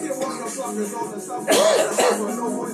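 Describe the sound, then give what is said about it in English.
Two loud, raspy bursts of coughing and throat clearing, about half a second apart, break out over a continuous low background hum. “We got me coughing, baby ones.”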